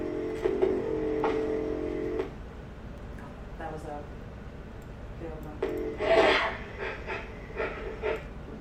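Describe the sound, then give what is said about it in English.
Heavy, ragged breathing of a fugitive man in a film clip repeats in uneven bursts, each labored inhale and exhale rough, with faint rustling between breaths and no speech. “His breath scripts his presence, his location, his existence, his fugitive body in ways he cannot yet camouflage.”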